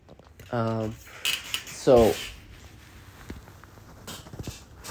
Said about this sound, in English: Oh, I'm going to grab a sip of water. Sorry, you guys, before we start.